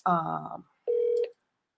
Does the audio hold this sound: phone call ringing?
yes